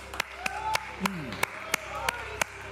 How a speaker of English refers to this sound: Come, let's raise our hands and let our voices be heard. Clap your hands.